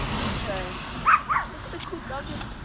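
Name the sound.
dog barking and whimpering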